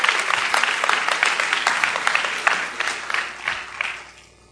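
An audience applauds, a dense wash of many hands clapping at a steady loud level for several seconds before thinning out and fading away at the end.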